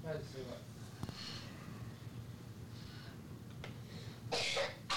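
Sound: child coughing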